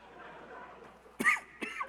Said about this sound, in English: The cotton candy and popcorn in the air is causing me to cough.